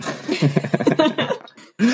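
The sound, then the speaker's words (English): A person coughs hard in a rapid, ragged fit of bursts for over a second, then pauses briefly before another loud cough erupts. “So I was thinking about that as I'm dying over here coughing.”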